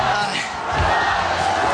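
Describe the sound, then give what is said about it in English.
A loud crowd shouting and yelling together in a steady, dense roar of many voices, with no single clear words standing out. “The crowd is getting rowdy.”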